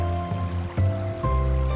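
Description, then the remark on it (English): A steady, rumbling rush of falling water, like a waterfall, washes underneath soft sustained musical tones that shift pitch a few times. No one speaks. “Your raft begins to turn a corner and you hear the sleepy bellow of a waterfall.”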